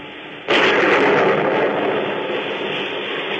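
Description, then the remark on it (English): A raging storm at sea off the coast of Maine: after a brief low rumble, a sudden loud crash bursts in and settles into a sustained, roaring wash of wind and surf that eases only slightly. No one speaks. “It's the story of a simple melody and of a killer who, as our story opens, is fighting desperately and alone against a raging storm off the coast of Maine.”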